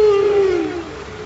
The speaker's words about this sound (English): And as we listen to some whales conversing with each other, let's take a break.